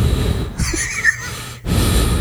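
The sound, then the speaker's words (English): Heavy, close-up breathing blows straight into a microphone, with rough, hissy inhales and exhales, a brief pause, then another loud breath. No one speaks. “Nah, with you licking your lips to get them all moist so you can talk into the microphone, you breathing all hard.”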